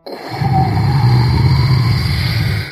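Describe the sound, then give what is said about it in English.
A rocket ship's engine roars steadily as it lifts off, a deep rumbling drone with a higher whine layered over it, holding for over two seconds before cutting off quickly as the engine sputters out after the ship rises only a foot. No one speaks. “The rocket ship started lifting off in the air, but it only got a foot before. The engine sputtered out and it fell back to the ground with a big burst of rocket”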